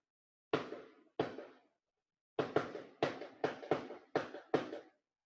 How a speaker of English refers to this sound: That's not a firework, is it? That sounds like guns. Yeah, that does seem like it could be the rapport of gunfire.